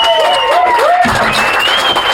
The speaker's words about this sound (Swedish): En stor applåd